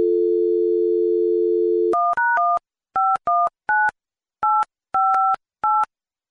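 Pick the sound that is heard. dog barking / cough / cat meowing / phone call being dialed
phone call being dialed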